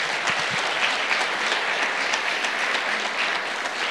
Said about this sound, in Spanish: Dale un aplauso fuerte, Señor.